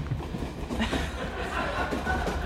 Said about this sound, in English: We will be in Kings Lyngby in about 12 minutes. Okay. Kings Lyngby. We are in the back of the train.